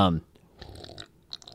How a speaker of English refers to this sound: Yeah, and I really want you to drink at the mic, too. Like, if you're going to take a sip of your water, just really get in there. Mm-hmm. This is delicious. Delicious beer.